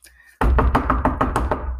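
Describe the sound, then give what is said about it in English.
A rapid series of about eight firm knocks on a wooden door, loud, delivered in an even quick rhythm after a brief quiet moment. “Come in. The door's open.”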